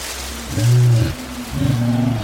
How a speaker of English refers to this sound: Kids, that's a lion. A huge lion. You need to run.